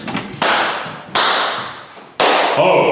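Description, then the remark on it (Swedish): Three sharp, loud hand claps spaced about a second apart, each followed by a long ringing echo that fades slowly in a stairwell. No one speaks. “Ska vi gå till trapphus och slå ett klapp igen?”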